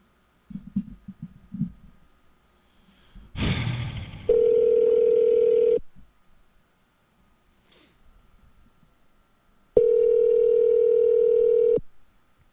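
A phone line purrs with two steady ringback tones, each lasting about two seconds and separated by a pause, after a few soft clicks and a brief rustle of handling, as a phone call is placed. Nobody speaks.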